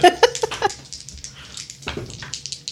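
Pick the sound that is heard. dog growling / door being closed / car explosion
dog growling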